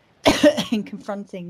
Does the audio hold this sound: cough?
yes